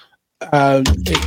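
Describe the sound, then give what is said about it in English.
A cable falls and clatters, a few hollow knocks and rattles with a dull thud underneath, following a brief voiced sound right before the impact. “No, it's a cable that just fell down from somewhere.”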